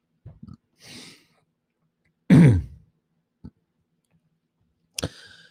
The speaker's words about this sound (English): sorry about that. Oh, man, I went down the wrong pipe. Sorry. I think I was drinking whiskey. Wow. I don't have a cough button. Sorry.